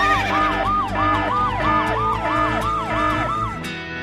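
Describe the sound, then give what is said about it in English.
A loud alarm siren sound effect, played as a "horse girl alarm", its tone sweeping rapidly up and down in quick, repeated wails, about two or three cycles per second, with no talking over it. “And sound that horse girl alarm.”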